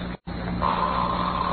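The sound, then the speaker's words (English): An unoiled back-door hinge lets out a long, steady squeak as the door is opened in fog, a thin whining note that holds for about a second over a low background hum, with no one talking. “Oh, I told you to oil it.”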